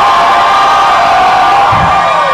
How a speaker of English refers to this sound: No, I'm talking about a shout of praise like you've never shouted before. Okay, we're going to take 5 seconds. I'm going to count to three, and as loud as you can, we're going to shout to praise for God. Ready? 1, 2, 3. Woo!